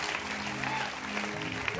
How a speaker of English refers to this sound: So clap your hands for Jesus. And clap your hands for the choir.